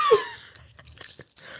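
Wet, open-mouthed chewing right into the mic, a sharp crunchy bite at the start followed by soft, irregular smacking and mouth sounds for a second or so, with no talking.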